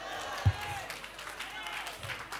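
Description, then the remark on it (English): Scattered applause from an audience, a steady patter of many hands clapping, with crowd murmur and a brief low thump near the start. “Those who are already clapping, I've got the revelation.”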